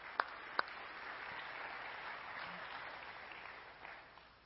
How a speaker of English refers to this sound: Let's give them a round of applause, a couple of our seniors.